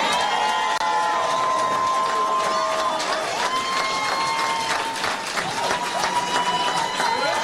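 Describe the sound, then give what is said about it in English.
A large crowd at the president's rally in Atlanta cheers and applauds steadily after his line about investing in black American communities, with loud sustained roaring, clapping, and high whistles and shouts rising above the din throughout. “Crowd love that line.”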